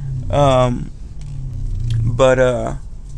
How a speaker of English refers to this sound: I'm parking, so a little distracted. Don't want to hit no cars, you know?